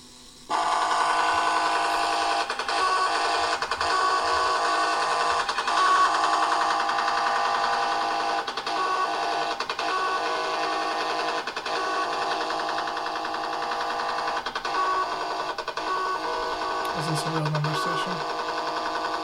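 A numbers station broadcast: a harsh, steady buzzing drone over radio static, loud and unbroken, with faint short tonal blips recurring and a low hum rising near the end.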